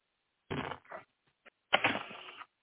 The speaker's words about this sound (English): A little more shuffling here.